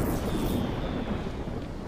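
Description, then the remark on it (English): A thunderstorm rumbles low and steady while the power is out at a house, with a deep rolling roar and a wash of rain-like hiss filling the background for a couple of seconds, no voices present. “But since my family has storm-ready Wi-Fi from Xfinity, they can stream and game like usual on all their devices all over the house.”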